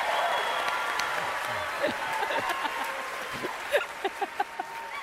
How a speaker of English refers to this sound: Well, this is an important point. Yeah, let me get my applause.